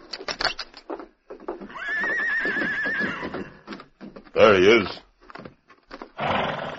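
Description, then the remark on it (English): The Lone Ranger's stallion, in riding gear, lets out a long, loud whinny, followed by a shorter quavering neigh, with sharp hoof clops near the start and a man speaking briefly between the calls. “Man alive, look at that stallion and that riding gear.”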